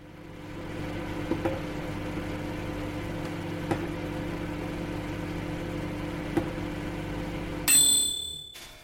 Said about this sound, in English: That's builders next door